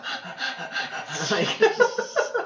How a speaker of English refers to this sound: The coon's dog panting, yeah. And I want to capture that in the mic.